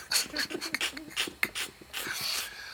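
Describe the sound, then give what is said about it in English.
A dog pants and snorts in a quick series of breathy, irregular huffs, ending with a longer rough exhale. “Oh, God. Dog.”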